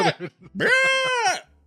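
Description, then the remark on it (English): A goat lets out a loud, drawn-out scream that sounds strikingly like a human yelling, preceded by a couple of short, choppy bleats. The cry lasts under a second. “I love goats that sound like people.”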